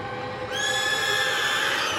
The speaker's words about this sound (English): After a moment's rest, 4 horses came barreling into the tent.